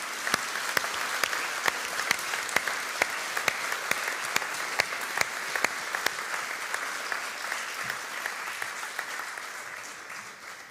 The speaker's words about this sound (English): Why don't we all give them a big round of applause because they stay.